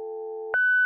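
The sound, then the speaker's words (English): The Beef and Dairy answer phone message beep: a steady, buzzy lower electronic tone for half a second, then a sharp jump to a clear, higher-pitched pure beep that holds at the same loudness, clean with no voices. “they could advertise their own businesses by leaving a message on the Beef and Dairy answer phone.”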